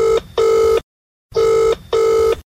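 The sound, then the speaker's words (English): A telephone rings loudly with two double-pulse rings, each a quick pair of electronic trills separated by a short silence, with no voices, as a call comes in to politician Maria Walsh's voicemail. “Maria Walsh is coming up, but because she's an eminent politician, we got access to her voicemails. Guess who was ringing in?”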